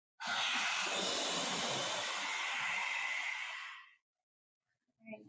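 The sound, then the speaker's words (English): A long, steady hissing exhale made with the tongue stuck all the way out of the mouth, a fire breath in a breathing exercise, broad and breathy, lasting nearly four seconds before cutting off, followed by a faint short breath near the end. “This time, whenever you're ready, we're going to stick our tongue all the way out of our mouth for Fire's breath. Like you're hissing with your tongue out of your mouth.”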